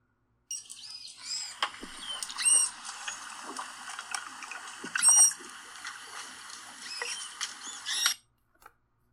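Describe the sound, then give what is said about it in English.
Squeaky, high-pitched chirps and whistles from a manatee come in repeated bursts over a steady airy hiss, with a few sharper squeals standing out; no one speaks. “It is the manatee.”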